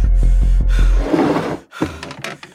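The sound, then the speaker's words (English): A man panting heavily from physical effort, a quick run of short, rhythmic breaths giving way to longer, ragged gasps and exhales as he catches his breath. No speech. “Panting from the effort, he took a seat to catch his breath.”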